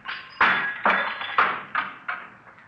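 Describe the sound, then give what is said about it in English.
A window pane is struck about six times in quick succession to knock a hole in the top half of the window, using a handkerchief; each sharp knock rings with a glassy tone, the hits gradually growing softer. No voices. “Let's see if I can knock a hole in the top half of the window here.”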